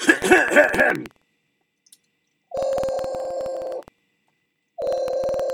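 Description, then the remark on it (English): A phone line ringing back while calling a woman's phone number: two long, steady buzzing rings separated by a pause of silence, preceded by a brief burst of shifting electronic tones. “Okay, so now I got the phone number. Let me call her up.”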